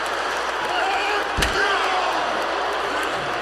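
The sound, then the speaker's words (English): One sharp, loud smack as the wrestler Edge clocks the wrestler Bryan with a steel chair cuts through a steady roar of an arena crowd, then the crowd noise carries on. “Edge clocking Bryan with a chair.”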